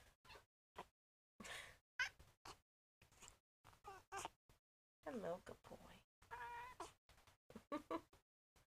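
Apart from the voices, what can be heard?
cat meowing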